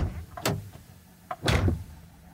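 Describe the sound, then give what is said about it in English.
A car door slams shut as someone gets out of the car, two heavy thudding bangs about a second apart, the second one louder and fuller, with no talking. “Ugh, I'm getting out of the car.”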